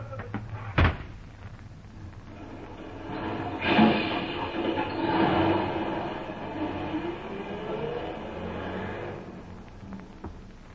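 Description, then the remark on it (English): A sharp latch-like clack, then a heavy door grinds open with a long, loud rumbling scrape that fades out after several seconds, as a woman is thrown out. No one speaks. “All right, hold that door open there. Now, come along. Out you go!”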